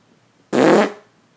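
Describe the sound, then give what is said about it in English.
A voice imitates a short, breathy fart sound, a single blast of about half a second that starts abruptly and trails off, with no other sound around it. “So it's like, it's, it is audible to those who know what farts sound like.”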